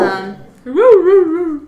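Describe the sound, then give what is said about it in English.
A dog, Bella, whimpers and gives a muffled bark: a short whine, a brief pause, then a longer rising and falling whiny yelp that wavers before trailing off. “Side note, we record around two dogs.”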